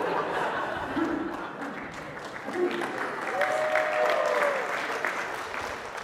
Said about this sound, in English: I haven't heard a clap in here in a while.